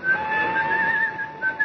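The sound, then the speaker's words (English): A man whistles a steady, wavering melody, clear, as he walks through the weekend crowds of Waterloo Station on a fine, clear morning, with a soft murmur of background noise behind it. “made his way, whistling as usual, through the weekend-bound crowds of Waterloo Station.”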